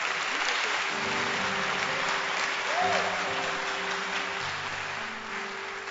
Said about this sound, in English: Then I will also clap.